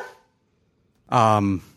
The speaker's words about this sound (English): Yeah, no. Back to the topic before we were interrupted by the dog.